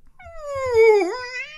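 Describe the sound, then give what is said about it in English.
A voice imitates an elk call with one drawn-out, whiny tone that sags in pitch, dips sharply, then climbs again. It is fairly loud, with no talking over it. “An elk goes like...”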